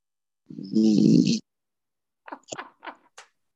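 A small flat-faced dog named Fiona, asleep, lets out one long, rumbling snore followed by a quick series of short snorts and snuffles, with no one speaking.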